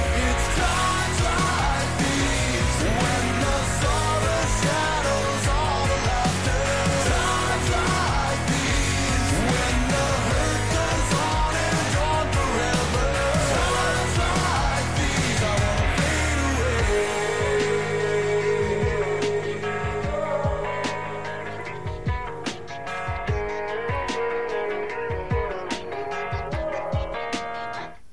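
A loud heavy metal song with a dense, driving wall of distorted guitars and pounding drums, which drops after about sixteen seconds into a sparser, somewhat quieter passage.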